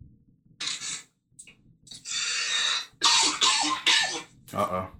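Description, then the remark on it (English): A series of harsh coughing bursts from one person, several in quick succession with short pauses between fits, loud and raspy with no talking. “We got a cough alert.”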